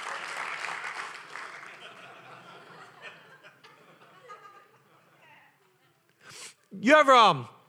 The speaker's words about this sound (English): And everybody said, come on, you ought to clap like you got faith for it.